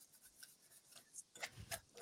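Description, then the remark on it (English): Paper slips for a draw of top seeds being shuffled in a bowl: soft papery rustles and scrapes in short irregular bursts, quiet at first and growing busier and louder near the end. “Very well shuffled.”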